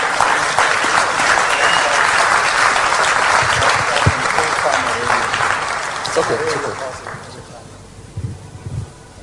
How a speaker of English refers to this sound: Yeah. These are all churches standing here. Clap for the churches who are standing here.